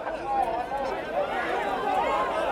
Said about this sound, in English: There is this guy, there is a guy who's yelling, a Trump protester that is yelling in the middle of the protest. He's now getting booed.